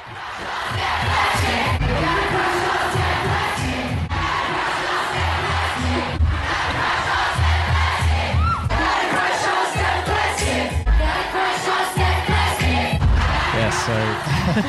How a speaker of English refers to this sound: We've got a pretty cool clip here that is a bunch of the cities that she played in with the crowd screaming your name. Let's hit it.